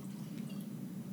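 A quiet, steady pour of bourbon into a glass, a soft continuous liquid trickle lasting about a second, with no talking.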